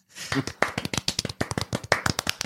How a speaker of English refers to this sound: That's some terrified clapping.